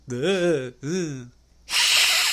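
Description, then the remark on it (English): A voice makes two drawn-out, wavering vocal moans, then lets out a loud, breathy hiss lasting under a second, mimicking a vampire hissing. “I like hissing vampires, like Christopher Lee in Hammer Horror.”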